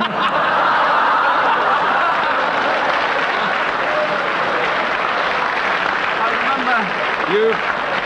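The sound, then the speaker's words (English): A live audience claps steadily and loudly for the whole stretch, a dense continuous wash of applause with scattered laughter and a few brief vocal whoops rising near the end. “You mustn't get applause.”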